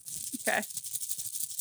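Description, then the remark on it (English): Paper slips shaken inside a New York Mets baseball cap, a steady rustling rattle that runs the whole length, with a brief murmur of voice partway through. “This is the sound of me shaking a Mets hat.”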